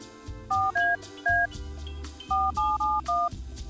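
A phone number is dialed on a touch-tone keypad to call a contest winner on The Biggs and Barr Show radio program: seven short, crisp beeps in two quick bursts, three then four, over soft background music.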